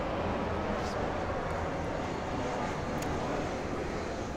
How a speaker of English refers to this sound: It's a really loud plane.